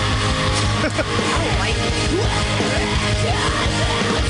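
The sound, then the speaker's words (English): Loud, dense rock music with screamed, yelling vocals over heavy distorted instruments and pounding low end, keeping a steady, wall-of-sound intensity throughout. “It sounds like the singer from … singing for ….”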